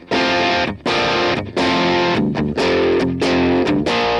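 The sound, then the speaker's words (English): Electric guitar through a Vox AC30 amp simulation plays loud, crunchy, overdriven chords in several sustained strums separated by brief gaps, with no voices. “This seems to be a Vox 30. Is that an AC 30?”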